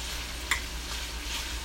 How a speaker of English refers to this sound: I'm sitting here cooking brunch right now. You know, while I'm talking to y'all.